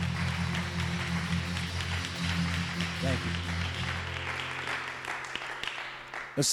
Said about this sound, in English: We give you praise. Let's just give him a hand clap. Thank you, Lord.